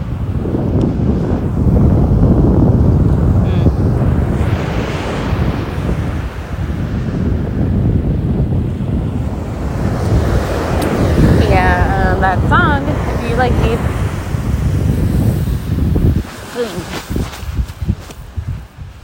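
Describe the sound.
Steady roar of ocean surf at a beach, loud, with heavy wind buffeting the microphone, faint muffled voices, and a few brief chirping tones midway.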